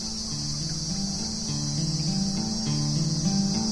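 Cicadas drone outdoors on a windy, beautiful day in a steady, shrill, continuous buzz that fills the whole stretch, with soft low tones stepping up and down beneath it and no voices.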